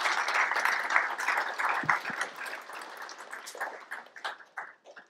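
An audience applauds in a dense, steady wash of clapping that gradually thins out, ending in a few scattered, separate claps as the applause dies away.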